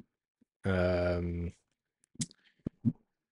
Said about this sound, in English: I'm super distracted because my cat's trying to walk on the keyboard here.